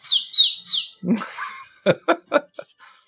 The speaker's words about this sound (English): There's a little pigeon in the porthole squawking.